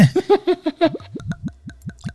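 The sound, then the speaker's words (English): Scotch whisky glugs out of a bottle as it is poured, in a quick, steady series of about a dozen hollow gulping pulses, fairly loud, with no voices. “The squeaks, the glugs.”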